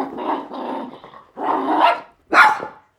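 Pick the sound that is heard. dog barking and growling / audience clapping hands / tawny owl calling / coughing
dog barking and growling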